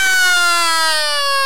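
A loud, steady electronic wake-up alarm tone with a rich stack of bright harmonics sounds continuously, its pitch sliding slowly downward, with no voices present.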